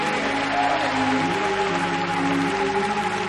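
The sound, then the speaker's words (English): After a prayer, a large crowd claps steadily and densely throughout, shouting in Jesus' name, with raised voices shouting and cheering mixed into the continuous roar of applause. “Everybody clap your hands and shout in Jesus' name.”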